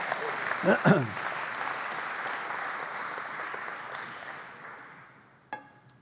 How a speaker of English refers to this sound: Come on, if you're going to clap, clap, right?